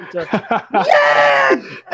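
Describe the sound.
A few quick voiced syllables lead into a loud, sustained, strained vocal wail lasting under a second, a person imitating a rock singer's scream before it cuts off.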